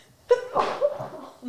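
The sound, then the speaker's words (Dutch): A single fairly loud sneeze: a short voiced intake followed by a sharp, breathy burst, then a brief trailing exhale. No one speaks. “Gezondheid.”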